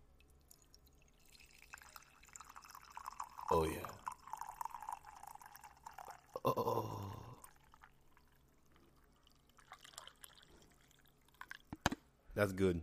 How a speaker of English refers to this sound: That's good. All right, coffee's poured.